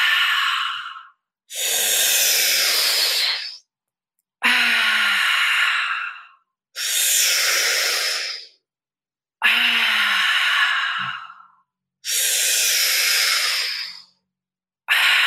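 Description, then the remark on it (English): Slow, deep breaths in and out, each lasting about two seconds with brief pauses between, fairly loud with a breathy hiss; no talking. “Continue breathing in and out.”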